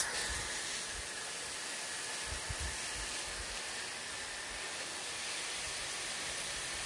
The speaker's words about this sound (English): This hose is just spraying water like there's no tomorrow. Hey, this hose, man. I need to fix this. Hold on. Okay. Still leaking.